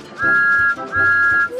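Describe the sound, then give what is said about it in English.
Two loud, steady whistle blasts, each about half a second long, with a short gap between them and no talking. “Whistle!”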